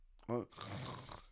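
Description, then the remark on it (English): A voice imitates a single snore: a brief throaty, buzzing snort followed by a longer raspy, breathy rattle that fades out. “And I fell asleep and I snored with my eyes open.”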